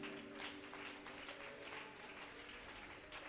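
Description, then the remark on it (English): An audience claps their hands together in a steady, dense wash of applause that fills the room, with many hands overlapping and a faint sustained tone lingering underneath. “If you believe it, why don't you just clap your hands?”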